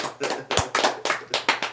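A short burst of applause: about seven sharp, close hand claps in a steady, even rhythm, with no one speaking over them.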